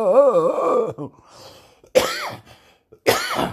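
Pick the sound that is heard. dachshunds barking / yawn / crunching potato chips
yawn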